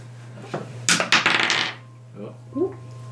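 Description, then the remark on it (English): Dice rolled for a performance check clatter across a hard surface in a quick burst of sharp clicks and rattles, followed by a faint murmur of voices and a steady low hum. “Roll another performance check as you.”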